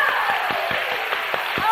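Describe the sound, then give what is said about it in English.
A church audience claps together for Jesus in a steady, dense patter of applause lasting a couple of seconds, with a few sharper, louder claps standing out from the continuous wash of hands. “Oh, shall we all give Jesus a clap?”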